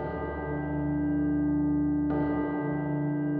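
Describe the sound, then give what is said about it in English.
The chimes of a neighboring church ring out in two strikes about two seconds apart, striking the four quarters, each tone sustaining and overlapping the last in a steady, resonant hum, with no voices present. “He was endeavoring to pierce the darkness with his ferret eyes when the chimes of a neighboring church struck the 4 quarters.”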